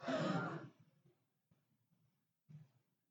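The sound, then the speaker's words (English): An audience gasps together in unison on a count of three, doing the 'Sharon gasp': one loud, breathy collective intake that fades quickly into scattered soft murmurs and a brief faint stir from the group. “We're all going to do the Sharon gasp together on three, okay?”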